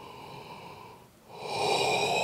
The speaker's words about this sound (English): Now, you see, as soon as I start doing this, I immediately yawn because all of my training is all connected.